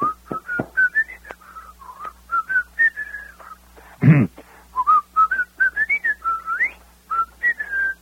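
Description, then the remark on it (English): A person whistles the tune Pop Goes the Weasel in a radio commercial for butter, a bright, tuneful melody in a steady run of short and held notes, clear, with one brief thump midway and no talking. “First, someone whistles the song.”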